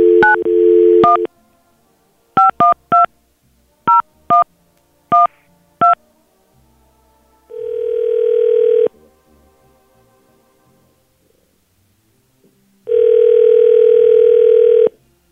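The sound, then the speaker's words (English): A steady dial tone, then a quick series of short two-pitch telephone keypad beeps dialing a number, followed by two long ringback tones separated by a pause, as hosts of radio station B93.7 call a woman live on air. No one speaks. “We're going to give her a call and see what she says.”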